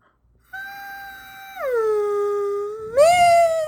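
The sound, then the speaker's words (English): A voice imitates a giraffe with one long, sustained howl-like tone that drops in pitch partway through, then swoops sharply up and gets louder near the end, heard alone. “Should make a giraffe noise.”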